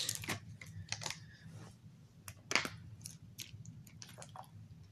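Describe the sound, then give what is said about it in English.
A plastic water bottle crinkles and its cap cracks open, with a sharp crackling burst midway, followed by quiet handling and sipping sounds. No one speaks. “and by the way, go ahead and crack a duo water.”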